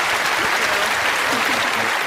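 A crowd applauds steadily, a dense wash of many hands clapping at once, loud and sustained throughout with no pauses.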